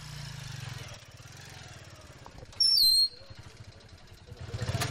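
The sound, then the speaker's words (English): Motorcycles arriving from farms, each laden with four milk churns, two on each side, putter and rumble at a steady low pulse, rising and falling, with a sudden loud, shrill whistle-like tone cutting in briefly midway before the engines continue. “As the day goes on, motorcycles start coming in from farms just over the horizon, each laden with four milk churns, two on each side, a total of 40 gallons of milk for each haul.”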